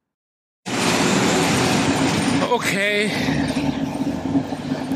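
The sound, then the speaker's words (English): A steady, loud rumble of rail noise fills a train station at about 4 o'clock in the morning as a train passes, continuing throughout while a man briefly speaks a single word partway through. “This is … at about 4 o'clock in the morning at the train station.”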